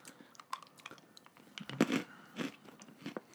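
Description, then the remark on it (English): Crunching as someone bites into a Whoppers malted milk ball and chews, a quick run of crisp, brittle cracks with a few louder bursts, no talking. “I'm switching over to Whoppers right now.”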